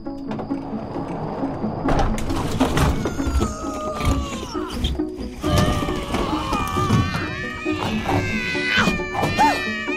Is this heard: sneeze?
no